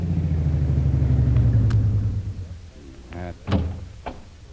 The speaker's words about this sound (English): An hour or two later, a long, powerful car twists its way through the winding streets of Singapore's waterfront. Kolu is at the wheel, and Jungle Jim is at his side. Okay, Kolu. Pull in here. This looks like the place.